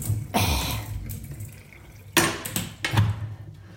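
Water from a shower head runs into a bathtub as it is given a quick rinse, a steady low rush broken by several louder splashing surges, with no talking.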